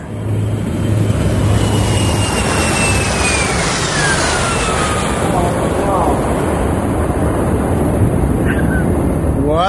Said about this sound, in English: Wow. Jeff Comfort took off in a big old jet airliner today.